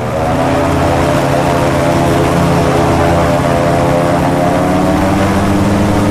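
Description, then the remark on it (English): A single-seat gyrocopter, open to the elements, with its engine behind the seat and its propeller above, drones loudly and steadily in a constant buzzing roar with wind rush and no break, heard from the open seat mid-flight behind a small windscreen. “The motor is behind me, the propeller above. This is going to be an experience.”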